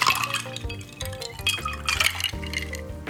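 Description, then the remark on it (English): A sloe gin and lemon juice cocktail with ice is poured from a cocktail shaker into two rock glasses, cubes clinking and rattling against the glass over a steady splash of liquid, fairly loud, with no talking. “Shake it up, nice, and pour the mix, cubes and all, into two rock glasses.”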